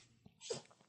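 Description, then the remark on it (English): A single short, sharp sneeze from Toffee the dog bursts out, a quick nasal snort with a breathy hiss, amid quiet and no talking. “Just had a little sneeze.”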